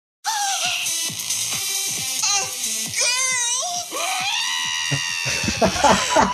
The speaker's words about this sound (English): the scream at the end.